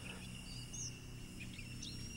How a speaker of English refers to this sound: Birds build their nests nearby and sing in the trees.